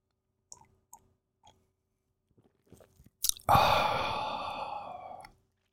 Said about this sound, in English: I'm stumbling over my words this morning because I've only had one cup of coffee and I've just poured my second one, so give me a second here while I take a sip.